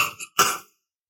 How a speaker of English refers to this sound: So it's like good disease control. You cough into your armpit, huh? Or into your elbow.